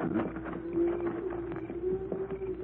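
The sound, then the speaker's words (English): A herd of cattle with riders on horseback draws near, a dense clatter of hoofbeats rolling steadily under a low, drawn-out lowing that runs through the whole stretch. “Riders with cattle, Cisco.”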